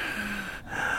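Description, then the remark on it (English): A person imitates a movie villain's heavy, raspy breathing: a loud, hissing breath held for about a second with a brief break partway through, and no words spoken. “the only thing that freaked her out about the movie was the sound of his breathing, which is like the one thing that I don't even...”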